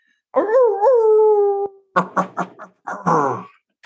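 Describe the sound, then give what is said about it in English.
A person imitates a dog in West Central Wisconsin: a drawn-out, wavering howl, then a quick string of three or four sharp barks and a final longer yelp. No talking. “Can I get some barks?”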